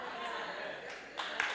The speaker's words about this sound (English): You see how we barely want to clap for that? That's my proof. You hear this little popcorn clap? Like when the last couple of pops of a popcorn bag, like it's the popcorn's done.